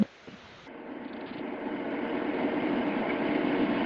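A helicopter engine whirs in a steady, dense drone that swells slightly in loudness over a few seconds, with no voices present, as the helicopter flies away after touching down to drop off a passenger.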